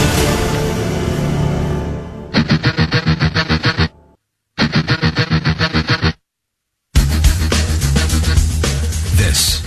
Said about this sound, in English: And you got to push that button to get rid of that echo for me, if you would, please.